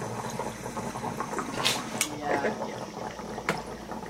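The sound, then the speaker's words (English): Steady bubbling of water gurgling through a bong as it is lit, a continuous churning rumble with a few sharp pops and crackles, as faint voices murmur in the background. “Because why are you lighting it right now? The water.”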